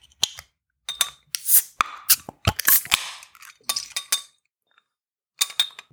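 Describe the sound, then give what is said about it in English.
Beer glasses clink together in a toast, a rapid cluster of bright, ringing taps with short pauses between, fairly loud, then a final pair of clinks after a brief silence. “Okay, shall we crack these open and get it started then? Yes. Cheers. Cheers.”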